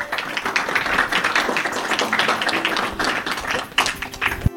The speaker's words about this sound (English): If we can give him a round of applause, a round of applause.